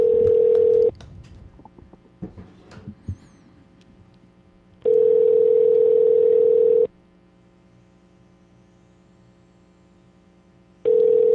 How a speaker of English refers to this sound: All right. Don's dialing right now. Hey, you think I know my mom's phone number? Here we go.